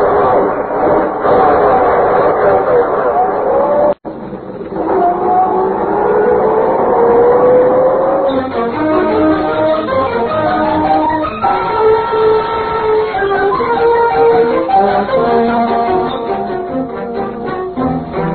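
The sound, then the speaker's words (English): A car engine revs loudly as the car drives out of a garage, its pitch climbing as the vehicle pulls away, then settles into a steady droning run. The sound fills the whole recording, with no talking. “When I get out of the garage, you duck down. If they try to stop us, well, I'll run them down.”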